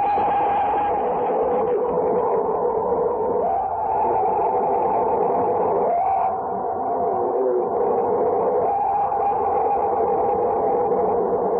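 An alleged Bigfoot scream: a loud, continuous, droning wail lasting the whole stretch, its pitch wavering and dipping in a few places, with no voices talking over it.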